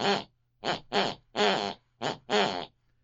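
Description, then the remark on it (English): An elderly woman snoring in the room next door, heard distantly through the bedroom wall, rising and falling in pitch as if following a song's melody, in six rhythmic, buzzy bursts with short pauses between, over a faint steady low hum. “We have the sound of my elderly mother snoring distantly from the room next door.”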